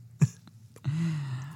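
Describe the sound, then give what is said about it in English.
A single sneeze: a short, sharp burst of breath followed after a brief pause by a drawn-out, low voiced exhale that holds steady before trailing off. No speech. “I'm breathing in your sneeze.”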